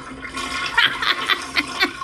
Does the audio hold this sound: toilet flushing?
yes